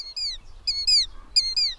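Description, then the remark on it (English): A European starling imitates a killdeer's call: sharp, high, down-slurred whistled notes repeated in quick pairs, clear against a faint low rumble, with no talking. “Starlings are especially astute imitators of bird sounds that have a whistled feel, like this sound of a killdeer.”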